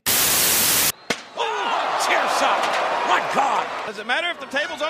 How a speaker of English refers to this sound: Doesn't matter if the table's on the inside of the ring or the outside, and another thunderous chair shot to the skull of Bubba Ray Dudley. Oh, man! A hard chair shot right in Devon Dudley's face. He's got that steel chair.